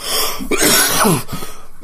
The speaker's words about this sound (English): Excuse me. Anyway, that's your Fear the Walking Dead cast. I'm gonna go cough some more, and then smoke something to make me cough some more.